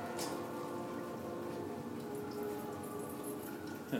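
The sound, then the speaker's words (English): Water drips steadily onto an Aston Martin car body, a dense patter of small drops with a faint background hum, no voices present. “Water is dripping on my Austin Martin.”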